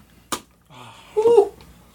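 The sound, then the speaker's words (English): A single sharp, close slap cracks out near the start, followed by a low murmur and a brief, higher voice-like tone, with no clear words spoken. “Why you slap?”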